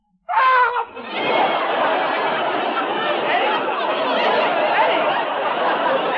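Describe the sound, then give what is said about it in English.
A man lets out a sudden, loud scream that cuts off after about half a second. A long stretch of audience laughter and crowd noise follows and keeps going. “You just screamed. You went, bow!”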